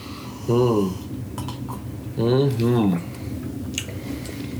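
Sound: glasses clinking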